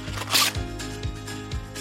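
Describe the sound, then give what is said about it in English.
A quick rip of a sheet of parchment paper being torn from a roll for wrapping sandwiches, one short crisp burst followed by a few soft low thuds over a steady background hum. “I'm gonna tear a sheet of parchment paper.”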